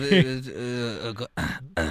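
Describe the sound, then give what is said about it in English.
Recorded coughing played from a phone: a strained, drawn-out vocal rasp followed by two short, harsh bursts, loud, with no talking over it. “that beautiful Oscar-winning performance of coughing that … got on her phone. And we thought it just behooved us to play it for you”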